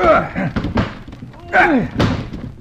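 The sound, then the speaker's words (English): Heavy thuds and slams of bodies against a locked door as people try to smash it open, about five blows in quick succession, loud, with strained grunts and vocal exertion mixed in. “Quick, let's smash this door.”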